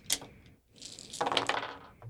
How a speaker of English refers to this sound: Just roll however many points you have in aspects. Roll that many dice.